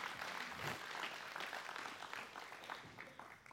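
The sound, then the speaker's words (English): An audience applauds people as they are being seated this morning, with steady, dense hand clapping that holds for several seconds and begins to thin toward the end, with no voices breaking through. “So, give them a hand clap as they're being seated this morning.”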